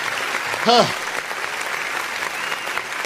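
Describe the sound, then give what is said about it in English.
An audience at the live show Morning Coffee claps steadily for about three seconds, a dense, even patter of many hands, with one short voiced whoop rising out of it near the start. “Where's my clap?”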